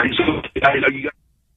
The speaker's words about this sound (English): We're losing him here. We're not hanging up on him. You can hear the phones breaking up.